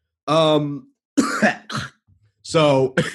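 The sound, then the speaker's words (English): A person coughs repeatedly in a loud fit from choking rather than sickness, with harsh, voiced hacks in uneven bursts and a brief pause between, mixed with throat clearing. “I love that I'm talking about how I don't like wearing masks while I'm like coughing up a lung.”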